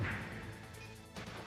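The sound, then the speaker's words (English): Rapid, rough clattering and thumping of a game controller being mashed hard while playing a fighting game (punching and ducking), keeps up steadily at a modest level, with a heavier burst of knocks near the end and no voices. “That might be me like smashing the crap out of the controller.”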